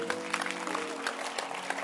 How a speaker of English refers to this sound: I really love the way the ladies are looking with their fascinators. It's very nice. Beautiful. Clap for them.